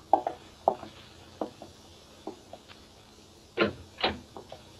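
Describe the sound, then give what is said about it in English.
A door being opened: a handful of sharp clicks and knocks from the latch and handle, then two heavier thuds and a creaky scrape as it swings, with no voices. “I'd pull myself together and went out and opened the door.”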